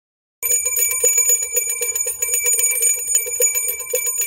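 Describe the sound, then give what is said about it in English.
A bright, metallic bell rings continuously for about four seconds, its rapid trilling strikes blending into one sustained, loud ringing tone with no voices. “It's a One Bell afternoon.”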